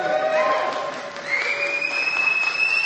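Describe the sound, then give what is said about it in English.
A crowd applauds steadily in the morning to welcome a woman about to speak, with dense, continuous clapping joined by whoops and high cheering voices that rise and hold over the clapping throughout. “Let's give her a cheer.”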